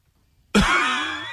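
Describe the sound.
After a moment of silence, a voice imitates a single harsh, dry cough, like one from an airplane passenger in seat 24C as the plane lands. The cough bursts out loudly and rasps on for nearly a second.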